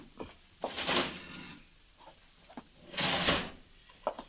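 A left-hand desk drawer slides open with a rattling scrape, then shuts with a second longer scrape, with small knocks and clicks around each movement. It is clear, with no voices.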